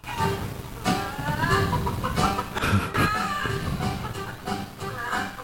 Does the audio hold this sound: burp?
no